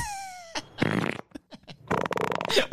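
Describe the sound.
Someone blows wet, buzzing raspberries with their mouth, imitating a fart: a short sputter, then a longer flapping burst, fairly loud, after a brief descending whistly tone.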